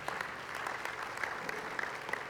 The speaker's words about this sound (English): Would you give the Lord a hand clap for His word today?